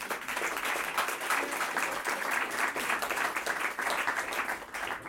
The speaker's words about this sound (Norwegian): Jeg kan gi en applaus, tror jeg.